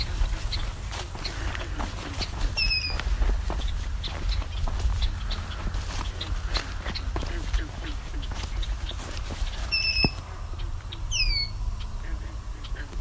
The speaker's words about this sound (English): Three more bobolinks. Mostly just calling those, no songs yet.